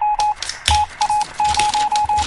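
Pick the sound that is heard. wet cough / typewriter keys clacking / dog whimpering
typewriter keys clacking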